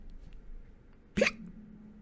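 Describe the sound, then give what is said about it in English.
A single loud, abrupt hiccup from a female house-elf, who clutches a bottle of butterbeer and sways on a stool by a fire, jolts out against a quiet, low background hum. It is short and sharp with a throaty catch. “As they watched her, she gave an enormous hiccup.”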